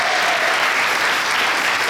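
A crowd claps steadily for a woman who has just read a Bible passage, a dense wash of many hands sustained at an even, fairly loud level with no pauses or voices standing out.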